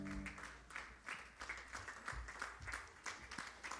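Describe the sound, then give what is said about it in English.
An audience claps their hands to the Lord in a steady burst of applause, many hands producing a dense, continuous patter with faint rhythmic pulses and no voices over it. “Now clap your hands to the Lord one more time.”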